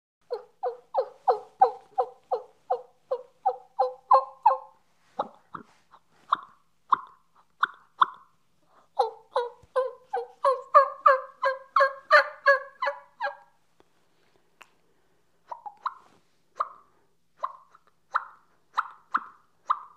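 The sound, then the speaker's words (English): Soft hen turkey clucks and tree yelps made on a turkey call to sound like a real hen: soft wake-up bubble clucks, then quick runs of raspy yelps alternating with slower, evenly spaced clucks, clear, with no talking. “And I'm going to start off with some soft wake up bubble clucks. And it's just, I'm going to transition into some soft tree yelps.”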